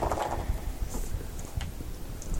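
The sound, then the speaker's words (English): Dice rattle and tumble across a table in a low, rumbling clatter, with a few sharper clicks scattered through the roll and no talking. “Let's put some dice down.”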